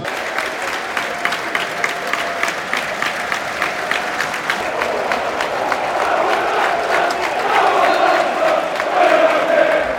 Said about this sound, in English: It's an official sellout. We have a minute's applause now for the victims of the Libya and Moroccan earthquake.